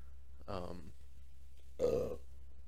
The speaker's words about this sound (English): Oh, Jesus. Excuse me. These ciders got me burping.